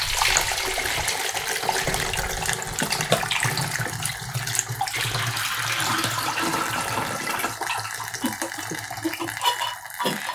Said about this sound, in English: Let's pour out the acid stop again into the container from whence it came.